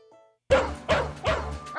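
A dog barks three times in quick, evenly spaced succession, loud, each bark sharp and full with a slight ringing tail.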